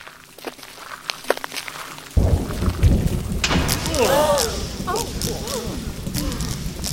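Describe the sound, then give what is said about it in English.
A lightning strike hits the metal rod on the tip of a huge central tower, bursting in with a sudden heavy boom after a quiet stretch, followed by a loud, sustained thunderous rumble, with a wavering voice-like tone rising over it. “When the next bolt of lightning came down, it struck the rod right on the tip.”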